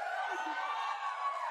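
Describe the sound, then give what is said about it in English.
A crowd at a live presentation of an Avengers video game cheers and roars steadily, a dense wash of many voices with scattered whoops, holding at a constant loud level throughout. “But before we go, the crowd is riled up.”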